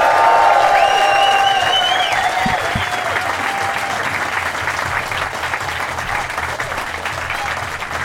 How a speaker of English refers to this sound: So I want a lot of excitement in the room. I want to get some applause going from now. Get it, build it nice and low so that the mics get ready for it. And a big cheer as I welcome to the stage, Kermode on Film, ladies and gentlemen.